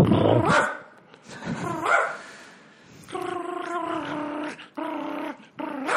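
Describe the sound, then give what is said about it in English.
A person imitates a small dog: two rough, yappy barks followed by three drawn-out, whiny yelps in quick succession, loud and alone with no other talking. “I can do a little shit dog sound.”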